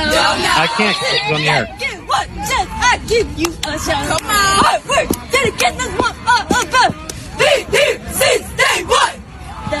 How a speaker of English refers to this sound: Some kind of douchey cheer squad. All right, you're on to it. It's a cheer squad.